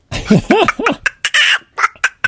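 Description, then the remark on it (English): A person imitates a chicken using their cheek, making a quick run of rising, warbling clucks followed by sharp squeezed squeaks and pops, fairly loud, with no speech. “Have you heard me do the chicken with my cheek?”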